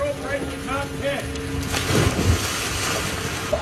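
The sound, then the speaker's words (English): A couple of heavy splashes as people jump into the Pacific Ocean, landing close together midway through, over steady surf and wind noise with faint voices. They are jumping in to reach the driver and passenger of a minivan that went into the water. “No, those no. are folks jumping into the water to try to save the driver and the passenger because they're swimming up to them with a little life buoy.”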